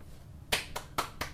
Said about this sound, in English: This is me clapping. Congratulations.